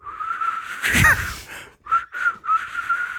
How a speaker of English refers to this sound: All right, I can whistle. I can whistle.